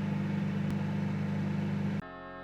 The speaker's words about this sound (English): Oh, the microwave. I found it in my garage. Previous owner must have left it.